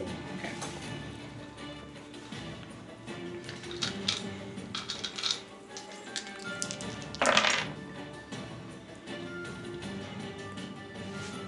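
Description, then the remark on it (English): Dice are rolled for damage during a game, rattling and clattering across a tabletop in several quick bursts of bright clicking, with one louder tumble later on, over a steady low background hum and no talking. “Go ahead and roll damage.”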